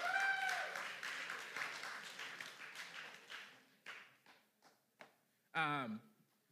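A burst of loud applause gradually thins out into scattered individual claps, ending with a short vocal exclamation.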